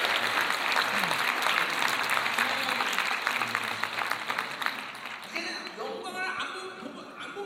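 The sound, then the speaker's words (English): An audience applauds to give glory to Jesus, clapping steadily in a dense, sustained burst that gradually thins out and fades toward the end, with a few scattered claps lingering. “So let's applaud and give all the glory to Jesus.”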